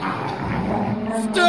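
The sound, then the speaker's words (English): A brief, loud burst of several dogs barking and yipping together, overlapping, growing more intense and shrill toward the end. “Call off the dogs!”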